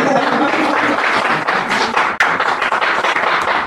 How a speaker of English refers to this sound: You go ahead, clap.